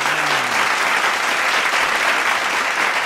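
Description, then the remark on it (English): Steady, dense applause from a crowd celebrating an engagement fills the whole stretch, many hands clapping at once in a continuous, fairly loud wash with no talking over it. “Clap it up”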